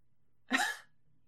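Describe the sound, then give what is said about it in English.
One sharp, explosive cough bursts out, lasting well under half a second, with near silence before and after. “Oh my god, that cough.”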